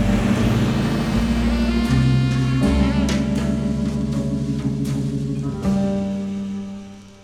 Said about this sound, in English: I put the car in gear and started rolling. I felt Murdoch's eyes were still on me, even when I turned the corner.